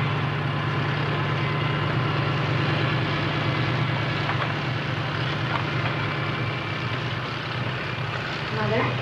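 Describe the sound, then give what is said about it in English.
Fire truck engines rumble and drone steadily as the fire trucks with the ladder are moved to try to get people out of a hotel through the windows, a constant low hum with faint indistinct voices in the background. “Okay, so they're moving the fire trucks with the ladder.”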